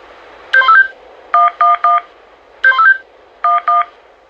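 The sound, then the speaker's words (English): Cell phone keypad dialing tones as someone dials to call, a run of short electronic beeps in quick bursts with brief pauses between groups, clear with no talking. “Now I could use the cell phone to call someone.”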